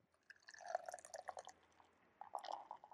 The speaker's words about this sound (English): All right, so what I'm pouring right now is Master Gao is the brewery. Puffed Rice Chinese Pale Ale. All right, well, so. That's what we have pouring right now.